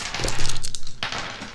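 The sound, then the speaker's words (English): Two dice are rolled across a hard tabletop in a quick burst of rattling clicks, then a second short tumble before settling; fairly crisp, with no voices. “Let's roll two dice each.”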